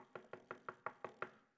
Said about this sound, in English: And Peter's still knocking on the door.